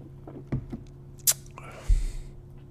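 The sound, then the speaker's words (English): A quiet sip of Voodoo Ranger Imperial IPA beer: a soft click, a short bright slurp, then a low thump followed by a brief airy exhale, with no talking. “Let's give it a little sippy sip and see how we do here.”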